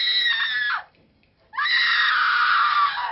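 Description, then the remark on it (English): A loud, piercing, blood-curdling human scream rings out, breaks off for a short gasp of near silence, then resumes as a longer, sustained shriek. “So, will that loud, blood-curdling scream be nothing more than the primal reaction to the discovery of a big hairy spider?”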